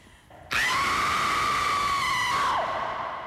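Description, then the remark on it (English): A woman lets out one long, loud, piercing scream of terror, held at a high steady pitch for about two seconds before trailing off, performed as an isolated vocal imitation. “That's a pure horror scream.”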